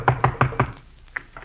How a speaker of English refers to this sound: Come on, I'll knock on the door. Go ahead.